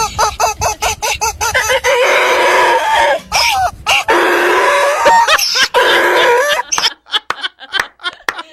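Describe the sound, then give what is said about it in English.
A rubber chicken bought at Tractor Supply for Nelson the donkey squawks loudly: a burst of quick honking squeaks, then two long, strained, wavering screeches, trailing off into short choppy squeals. “She buys a rubber chicken.”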